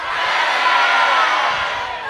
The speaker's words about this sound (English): let's have everybody yell their first name one more time. Yeah, yeah, yeah. 1, 2, 3.